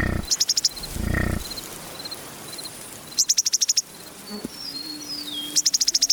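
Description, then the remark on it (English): Open outdoor prairie ambience on the windswept grasslands of the American and Canadian plains, recorded by Lang Elliott and Bernie Krause, where an insect repeatedly bursts into fast, pulsing trills, with faint chirps scattered between and a brief low rumble of wind near the start. “They make their playground where the skies are not cloudy on the vast windswept grasses of the American and Canadian plains.”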